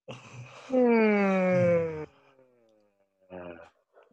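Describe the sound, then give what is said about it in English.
During a breathing exercise called the cosmic yawn, a short breathy inhale through the mouth leads into a long, loud, voiced yawn that slides downward in pitch and trails off, followed by another quick airy breath in. Clear, no talking. “You're going to breathe in through the mouth, breathe in through the mouth again, and let go with a yawn.”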